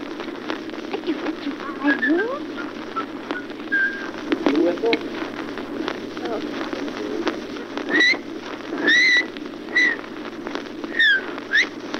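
A person whistles a simple tune: a string of clear, sustained pitched notes, sparse at first and then more regular toward the end, over a steady low hum and hiss.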